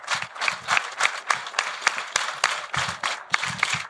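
Audience applause: a steady, dense patter of many hands clapping, fairly loud and continuous throughout, with slight swells in intensity and no voices.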